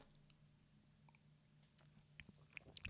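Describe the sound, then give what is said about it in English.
Someone quietly sips hot ginger tea, with soft wet mouth clicks and small slurping sounds that grow louder toward the end, over a faint steady low hum. “And the issue of life for me right now is to drink a sip of tea.”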